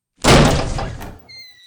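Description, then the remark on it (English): The door of room 212 is kicked and flies open with one loud, heavy crash, followed by a rattling, rumbling decay and then a thin, high ringing tone as the noise dies away. “I kicked the door and it flew open, and then I looked inside.”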